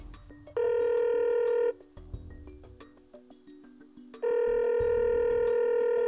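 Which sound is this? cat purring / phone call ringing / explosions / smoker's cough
phone call ringing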